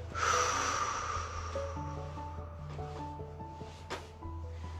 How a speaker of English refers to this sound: So I want you to breathe in for five. One, two, three, four. We're going to hold our breath for five, three, four, five, and out for five.